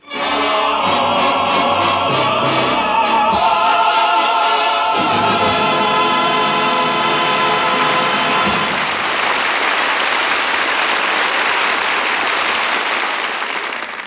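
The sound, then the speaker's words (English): A special show train on the New Haven Railroad rolls along the tracks with a quick rhythmic chugging, then a sustained whistle-like tone sounds before giving way to a loud, steady rushing roar. No one speaks. “a special show train brought our audience to see The Big Show”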